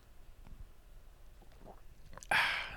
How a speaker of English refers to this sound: Just gonna have a sip of my tea.